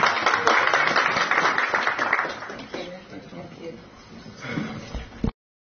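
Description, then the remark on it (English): Applause from an audience for the panelists at the South African LGBTI Business Summit: a dense wash of many hands clapping, loudest at the start, then tapering off over a few seconds as it fades into quieter murmuring. “And I think, let's give a hand clap to the panelists.”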